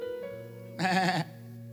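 sheep bleating

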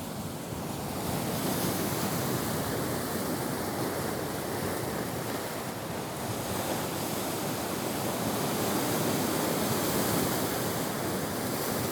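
ocean waves surf

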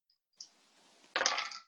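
two dice being rolled

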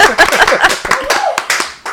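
round of applause

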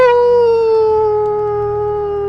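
dog howling

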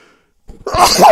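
sneeze

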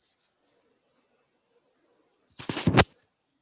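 typing on a keyboard

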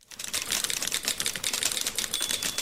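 typewriter keys clacking

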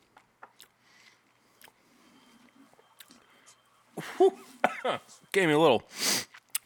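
cough

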